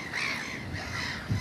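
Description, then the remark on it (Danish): A large flock of thousands of gulls at a nature reserve calls continuously, harsh overlapping cries layered into a dense, steady chorus with no talking. “Det her sted er et naturreservat for, jeg ved ikke hvor mange tusind måger, som du godt kan høre.”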